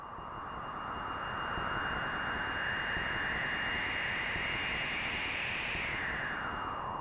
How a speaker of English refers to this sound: And while they sound like a field recording at first, you soon notice they don't quite sound like any wind you'd hear out in the natural world.